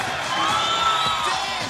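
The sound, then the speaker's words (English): A crowd at a drag ball cheers wildly as a performer struts down the catwalk on the ballroom floor, a dense steady roar of shouts and high-pitched whoops that stays loud and constant throughout, with no clear speech. “She struts down the catwalk confidently, working the crowd, and they go absolutely wild.”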